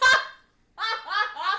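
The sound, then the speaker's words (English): A voice imitates a honking sound: one loud, nasal honk, a short pause, then three quicker honks run together, with no talking around them. “It's a totally like different single separate scene of him saying that word and honking his junk.”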